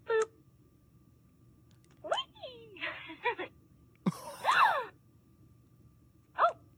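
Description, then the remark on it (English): A toy doll, triggered by pushing a button on its lower body, lets out a series of breathy, high-pitched electronic gasps and sighs in short bursts with pauses between them, with no talking over them. “And if you push those, she makes these sounds.”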